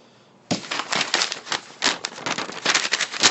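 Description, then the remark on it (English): Steady crinkling and rustling of paper, with irregular crisp bursts that start abruptly after a brief quiet moment and continue without any talking. “Okay, let's have our editors add in some sound effects of paper rustling right there, so it sounds like we're actually dealing with ancient parchment.”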